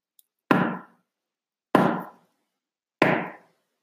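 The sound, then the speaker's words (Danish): Three heavy, booming knocks on a door, struck hard with a large handmade gold-coloured brass knocker, evenly spaced about a second apart, each a loud wooden thud with a deep ringing tail that fades before the next blow. No voices. “Et hårdt og rungende bank mod døren lyder.”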